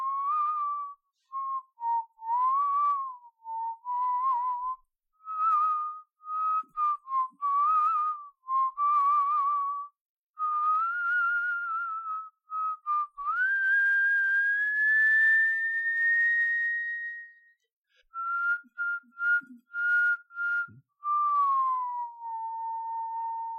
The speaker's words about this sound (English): "Anything you like," said the footman, and began whistling.